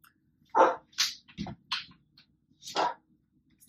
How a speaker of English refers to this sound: My neighbor's dog is barking incessantly again.